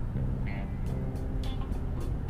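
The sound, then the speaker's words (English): Steady, loud road traffic rumble, broken by a couple of short high-pitched squeals of vehicles slamming on their brakes and a few brief hissing bursts. “Sorry, traffic started slamming on their brakes for some reason.”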